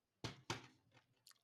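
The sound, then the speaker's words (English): Chewing of a dishwater-flavored jelly bean: two sharp, sticky bites in quick succession, followed by a few softer, fading chews and a faint smack at the end. No one speaks. “And the thing is, it's hard to chew it because it's like, you can't just swallow the”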